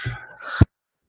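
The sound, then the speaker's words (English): A single sneeze: a drawn-out, voiced intake rises for about half a second, then breaks into one sharp, loud burst that cuts off abruptly into silence. “Bless you.”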